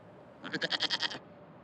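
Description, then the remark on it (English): A goat lets out one short, quavering bleat, its voice pulsing rapidly in a tremolo. It stands alone against a quiet background with no talking. “It's a goat.”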